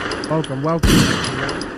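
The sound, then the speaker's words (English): A short voiced sound is cut off by one loud, sharp gunshot sound effect, followed by a rough, lingering noisy tail that fills the rest of the moment. “I have to let off three gunshots real quick.”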